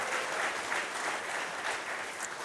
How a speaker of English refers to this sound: So if you love your pastors, why don't you give them a round of applause? That's good.